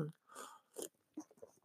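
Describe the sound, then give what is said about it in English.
Someone sips coffee with soy milk and a dash of doTERRA cinnamon: a soft airy slurp, then a couple of wet swallowing gulps and small mouth clicks, fairly quiet with no talking. “And right now, I'm sitting here looking out at the beautiful sunshine, having a little sip of my coffee with my soy milk and a little dash of doTERRA cinnamon.”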